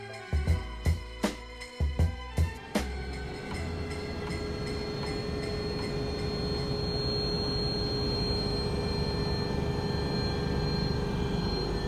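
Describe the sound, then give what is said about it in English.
A helicopter in flight from the wine valleys of Kaheti up to Shenako and Tusheti in the mountains: a few heavy rhythmic thumps open, then a steady, loud droning roar with a high turbine whine holds throughout, with no voices. “Now, back to that helicopter for a story about Shamil, the Lion of Tusheti.”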